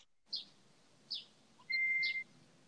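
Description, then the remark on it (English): Birds chirp softly in the background, a few short bright calls spaced apart, followed by a longer steady whistle, over a quiet low background hum with no talking. “I like the birds in the background.”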